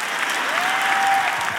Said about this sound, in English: I know crazy when I see it, and I'm looking at 27,000 crazies in the church today. Everybody has an arrow. Why are you cheering about that? It's awkward.